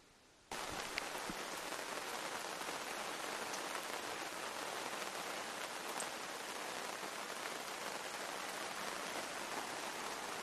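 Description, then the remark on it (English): Steady rain pours down in woods near Lake Huron while camping, a dense, constant hiss of drops on leaves and ground that starts abruptly after a brief quiet moment and continues evenly without any talking. “I guess you can tell that's rain coming down.”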